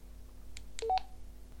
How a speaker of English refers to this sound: When enabled, your radio will talk back to you. meaning audible confirmation when pressing keys and working the menu system.